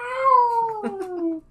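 cat meowing

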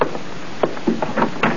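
knocking on a door

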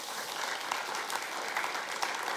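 audience cheering and applause

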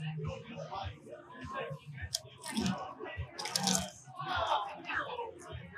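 chewing crunchy food

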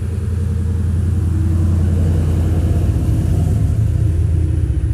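truck driving past outside

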